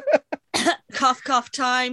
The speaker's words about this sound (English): cough time.